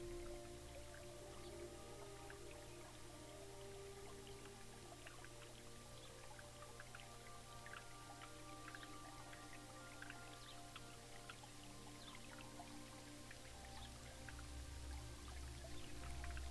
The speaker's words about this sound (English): As you start walking towards the spring, a light desert rain begins to fall.